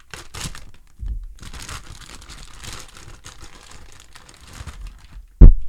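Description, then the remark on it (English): The plastic packaging of a vacuum-sealed package crinkles and crackles in irregular bursts as it is opened, with a brief tearing rustle, ending in a sudden sharp thump. No one speaks. “And lastly, vacuum sealed.”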